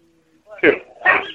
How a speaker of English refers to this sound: Max, calm down, Max. That's his dog. Oh, yeah. I hear that thing yapping all the time. He's always got that thing around.